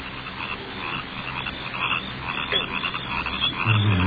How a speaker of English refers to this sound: Crickets are getting on my nerves.